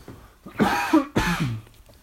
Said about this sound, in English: I just need to cough. One sec.